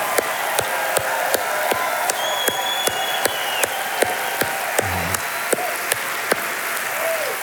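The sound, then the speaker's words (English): An audience claps in a steady rhythm, sharp regular beats standing out above a dense wash of scattered hand claps and faint crowd noise, sustained throughout. “It's also, clapping is a declaration of joy.”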